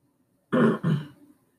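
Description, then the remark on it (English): A person clears their throat into the microphone in two quick, rough bursts, the second trailing off into a brief low rasp before silence. “Excuse me, I actually had to clear my throat.”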